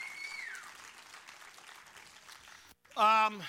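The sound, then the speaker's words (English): A church audience claps steadily for nearly three seconds, applauding the Lord as the offering basket is passed, with a high whistle sliding downward at the start. After a brief gap, a single loud voiced cry rings out. “Let's applaud the Lord today and let the basket come by.”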